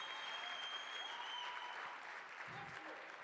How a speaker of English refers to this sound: You're going to clap your hands louder.